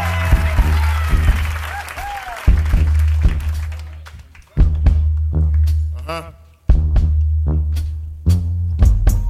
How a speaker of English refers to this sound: Give him a big round of applause, ladies and gentlemen.